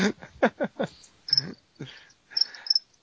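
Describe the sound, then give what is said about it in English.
A few short, shrill chirps from crickets infesting an apartment ring out in brief bursts, spaced unevenly over a few seconds, mingled with low, muffled voice-like sounds at the start. “are you trying to do a cricket's sound effect? Because I don't think it's playing. No, I just have them.”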